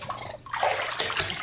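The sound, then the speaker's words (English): A pet raccoon kept in a home is lowered into bath water: a soft trickle, then a steady burst of sloshing and splashing as the raccoon splashes, continuing to the end. No voices. “can you just hold on a second while I put Tangy in the bath?”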